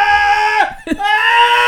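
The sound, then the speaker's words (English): A voice imitates the engine of the speaker's Honda D-series car with a loud, strained, scream-like whine, which drops briefly as if shifting gears and then climbs back to a sustained high pitch. “That's a Honda. Right. That's a D series.”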